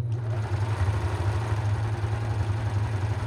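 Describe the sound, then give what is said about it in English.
An Ovation coverstitch sewing machine runs steadily while stitching a hem in DBP fabric from LA Finch Fabrics, giving a continuous low, buzzing motor drone with a fast, even chatter and no talking. “And I've just turned it over, and my cover stitch is catching it nicely.”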